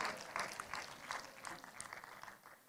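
crowd, round of applause

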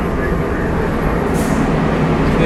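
vehicle, train interior rumble

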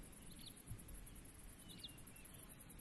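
bird, hermit thrush singing

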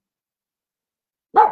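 animal, dogs barking

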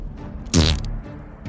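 human body sound, fart sound

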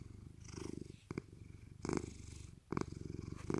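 animal, cat purring

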